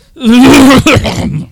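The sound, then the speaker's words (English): A single loud vocal imitation of a cough, a strained voiced sound breaking into a sharp burst, as if a word is being coughed out. “But he looks to his left, looks to his right, and he coughs out Nigel.”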